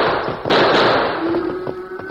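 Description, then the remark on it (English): A loud, sharp gunshot, fired at a rattlesnake, cracks out over a dense, hissing background roar, followed by further crackling bursts, with a faint steady hum emerging beneath. The shots stampede cattle. No one speaks. “Those shots have stampeded the cattle.”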